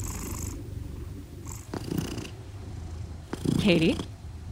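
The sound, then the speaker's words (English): A domestic cat, one of two pet cats named Calvin and Hobbs, purrs in a steady, low rumbling drone lasting several seconds, with a brief higher-pitched chirp-like vocal sound rising over it near the end. “When I have bad insomnia, their purrs are pretty much one of the only things that can lull me to sleep.”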